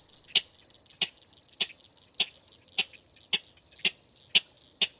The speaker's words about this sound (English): To my absolute delight, I soon came upon a king rail, calling loudly from bulrushes right next to the road.